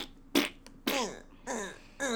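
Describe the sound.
A series of four wet, buzzing fart noises blown with the mouth, a raspberry imitation of flatulence, fairly loud, with short pauses between each blast and no talking.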